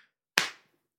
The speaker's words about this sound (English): No, but neck slap hurt. Neck slap. Sting a lot. Neck slap sting.